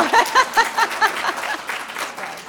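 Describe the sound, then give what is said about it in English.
An audience applauds in a dense, steady wash of clapping, with a few rhythmic vocal whoops or cheers riding over it at the start before the clapping carries on alone. “Let's have applause. I want that going. More applause.”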